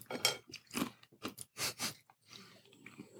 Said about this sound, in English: I'm going to have a little bite of cracker. I will take out those really obnoxious crunches.